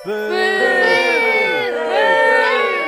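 A crowd boos and hisses loudly, many overlapping voices holding long, wavering jeers that swell twice over three seconds, with no single speaker standing out.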